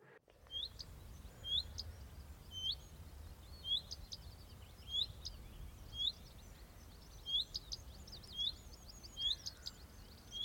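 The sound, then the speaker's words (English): A small red-breasted songbird, a redstart, calls repeatedly from close by in a flowering hawthorn tree, short bright chirps and twittering phrases recurring every second or so over a soft low background hum. “And this bright red-breasted bird sat in the tree and followed me and made the following little noise.”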